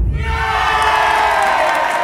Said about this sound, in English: Jubilant Kaurava brothers burst out in wild cry. They jumped off their seats and danced around Shakuni and Duryodhana while singing their praise.